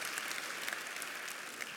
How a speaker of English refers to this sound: Won't you give those that prayed this prayer just a really good round of applause? There were many hands that were raised.